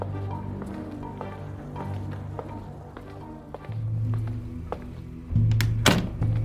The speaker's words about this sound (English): Holy Father, the people are downstairs again, banging on the doors. They wish to see you, for you to heal them.